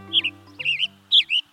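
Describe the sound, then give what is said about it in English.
A male western tanager chirps from the branch of a Douglas fir in a few quick, bright, burry phrases, loud, separated by short pauses, with a faint low steady hum underneath. “A male western tanager chirps loudly from the branch of a Douglas fir.”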